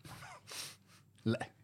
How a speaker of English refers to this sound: I hold a gasp of air